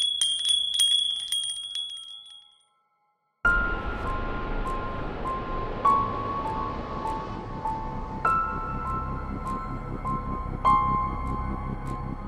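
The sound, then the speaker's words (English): Hanging chimes ring with bright, tinkling tones, then after a brief silence, clear metallic strikes repeat every couple of seconds over a dense, rumbling background. “He sometimes spotted a shadow lurking around behind the curtains of his room's balcony window, but the moment it closed in, the chimes would chase it away.”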